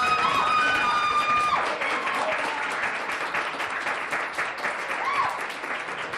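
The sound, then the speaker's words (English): An audience applauds to vote Danette Chavez the winner of the debate with Baby Pope, a steady, dense wash of clapping for several seconds with a few whistles and cheers rising over it early on, staying loud throughout. “Whomsoever believes that the winner of this debate with Baby Pope was Danette Chavez, please applaud now.”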